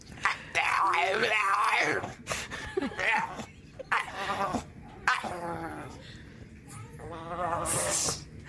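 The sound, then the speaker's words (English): A dog arguing with its owner over food moans and grumbles in long, drawn-out, wavering vocalizations, fairly loud, sounding eerily zombie-like, with brief pauses between the groaning bursts. “That sounds like a zombie on The Walking Dead.”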